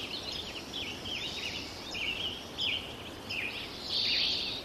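A thin chorus of birds, with a few scattered chirps and short warbling phrases coming and going over a steady background hiss, recorded at Sugarloaf in 2009 as bird populations were beginning to thin out. No voices.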